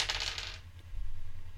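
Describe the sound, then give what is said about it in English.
A brief, bright clatter of dice rolling and rattling across a hard tabletop for about half a second, landing on 96, then settling into quiet with a low background hum. “And that's 96 again. I don't know what the hell is wrong with this dice.”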